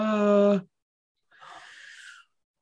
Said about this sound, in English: Well, thank you for kitten mews because those are always the best.